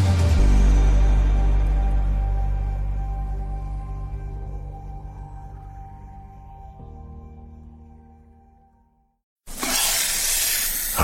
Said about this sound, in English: Copperhead snake. It hisses before attacking. But that's not a copperhead. That's the Sullivan's RV freshwater tank overflowing into their black one, which is backing into their vent pipe, making for a very different kind of attack.